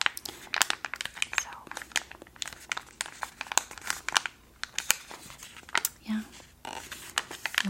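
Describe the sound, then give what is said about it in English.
Crinkling of a drink mix packet: a dense run of sharp, papery crackles and crunches in uneven bursts, fairly loud, with no voices over it. “lots of crinkles”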